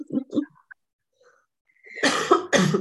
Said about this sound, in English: We both have colds. Oh, this cough.